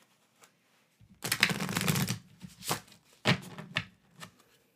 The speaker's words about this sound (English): So, give a little shuffle to these cards.